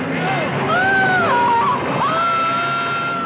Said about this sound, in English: It would be the coolest moment in the movie if that fucking scream that he does as he falls into the worms wouldn't have happened. Because that scream's fucking terrible.